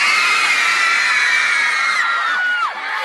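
crowd, crowd of girls screaming

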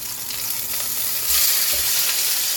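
food or drink, food sizzling

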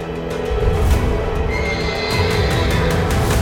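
animal, horse neighing

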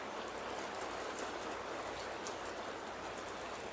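nature, rain falling

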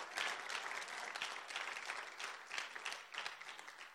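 crowd, audience clapping

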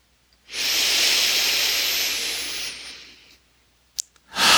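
human body sound, long

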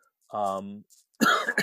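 human body sound, cough

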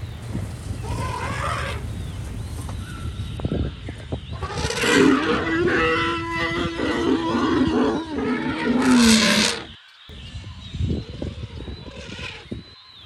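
animal, lions roaring

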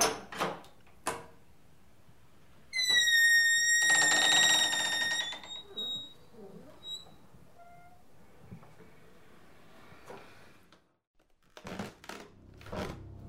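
sound effect, door opening

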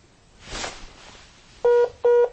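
signal or alarm, telephone keypad dialing tones

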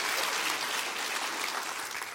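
crowd, audience clapping hands

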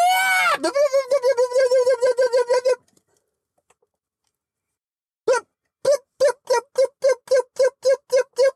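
human body sound, person screaming

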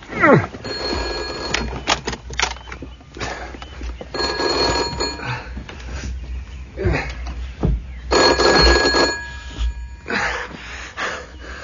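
signal or alarm, telephone bell ringing

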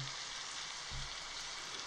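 nature, rain falling

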